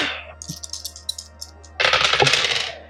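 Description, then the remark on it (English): Two dice clatter across a hard table during a roll in a tabletop game, landing on a 4 and a 6: a few scattered light clicks, then a loud, dense rattling tumble that lasts about a second, with no talking. “Who needs these dice?”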